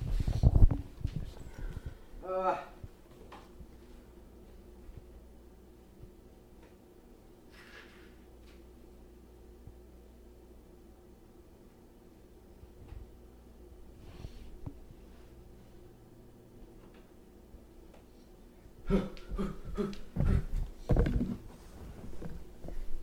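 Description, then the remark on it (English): Someone blows their nose, with a loud burst at the start, a long quiet stretch with faint shuffling, then several more forceful, snorting blows near the end. “I gotta blow my nose, hold up.”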